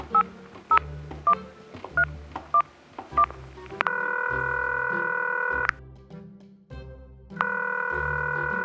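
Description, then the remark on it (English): Six quick telephone keypad tones beep in an even rhythm as a phone is dialed on speakerphone, then a long, steady ringing tone sounds twice with a pause between, clear and fairly loud with no one talking. “Come on, let's go dial this phone. Let's put this baby on the speakerphone so I can do a little coaching.”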